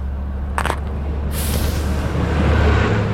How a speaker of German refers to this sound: Es ist ein Bus. Ich werde verrückt.